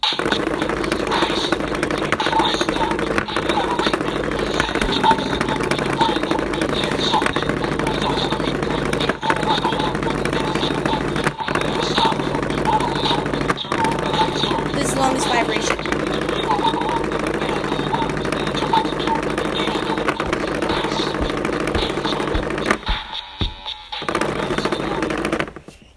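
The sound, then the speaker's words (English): A singing toy buzzes and rattles against a table as it plays a wavering electronic tune, vibrating and spinning on the table as it sings, a loud, continuous raspy drone that stutters and cuts out near the end. “That's because the thing actually vibrates as it sings.”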